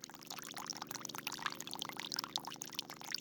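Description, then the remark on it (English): A steady trickle of Colorado River water from a small hose at the base of a tree, watering its roots, splashes and patters continuously, fairly soft, with a fine bubbling texture throughout and no voices. “At its base is a small hose with a trickle of Colorado River water targeted at its roots.”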